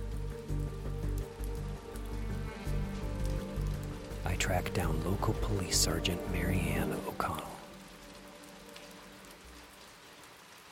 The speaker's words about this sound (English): The rain picks up a little.